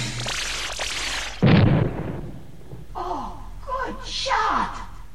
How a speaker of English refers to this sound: Fireworks! It is a pretty good trick how they blow up in slow motion.